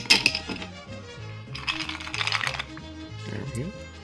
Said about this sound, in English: Sounds like a little highball glass you got there. That's a heavy pour. It sounded like it.